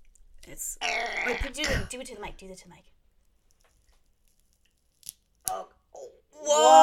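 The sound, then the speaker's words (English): Dry crunching and crackling as a dried plant bud bigger than a thumb is broken open, lasting about two seconds, followed by a pause, a few short sharp clicks, and a voice at the end. “So I'm gonna crunch her open. Crunch it.”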